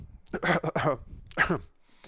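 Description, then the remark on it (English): A couple of throaty coughs come in two quick bursts, the first a rough cluster and the second a single harsher hack, with a brief pause between them. “He coughed a couple of times.”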